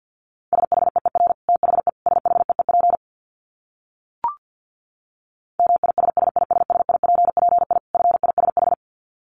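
Fast Morse code beeps at 50 words per minute in a single steady mid-high pitch, keyed in rapid dots and dashes across two long runs, separated by a pause broken by one short click.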